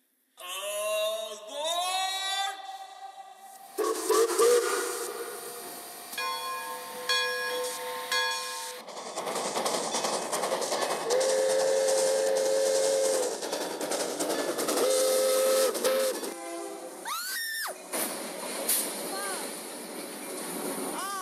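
A steam whistle blasts at the start, then a loud train rumbles and clatters steadily past, with more drawn-out whistle tones sounding over the rolling noise and a final whistle near the end.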